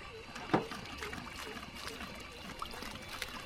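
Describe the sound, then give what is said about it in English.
Surface water being pumped out from around groundwater sampling wells, trickling and splashing steadily, with a sharper splash early on and a continuous wet, gurgling texture throughout. “we need to first pump out the surface water from around them.”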